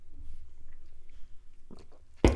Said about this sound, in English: Let me take a sip.